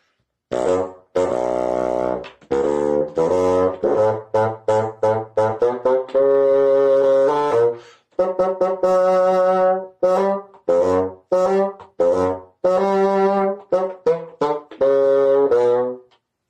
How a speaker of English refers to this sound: Grandpapa's music is played by the bassoon.